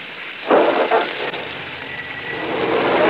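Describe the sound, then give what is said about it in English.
Steady rain hisses throughout at a moderate level, with a couple of brief louder surges early on before it settles into an even, continuous patter. “I live alone, but I'd hate to walk all the way out to North Hollywood in this rain.”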